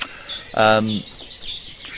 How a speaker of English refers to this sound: So the better the song, the stronger the individual. And you'll find that with younger birds, their song is not so refined, as complex as the older birds. They learn, they pick up bits of song from other birds. So the song can develop over the years